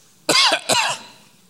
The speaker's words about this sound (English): Just a little bit of cough.